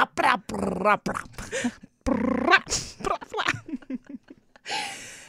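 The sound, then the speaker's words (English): A person imitates a growling dog, making several rough, throaty bursts with short pauses between them, loud and with no other sounds around them. “It's a dog, right? A dog, a sort of dog in a gunfight.”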